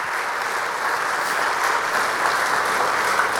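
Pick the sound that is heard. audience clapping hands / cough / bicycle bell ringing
audience clapping hands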